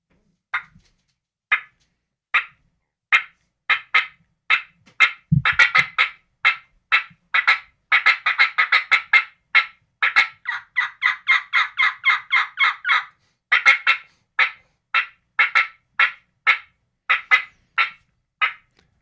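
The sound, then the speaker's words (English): Loud, sharp clucks from a turkey call mimic an excited hen cutting, popping out in quick irregular bursts that speed into rapid runs, clear with no talking. “Do a little cutting for him, cutting of excited hen.”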